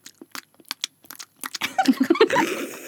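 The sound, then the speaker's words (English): Wet gum-chewing smacks and clicks for an ASMR recording, in a quick irregular rhythm, growing denser and louder toward the end, where soft voiced murmurs or giggles mix in. “We're just going to talk silently and chew gum.”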